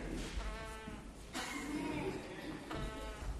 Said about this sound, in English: Sounds like a sheep, doesn't he?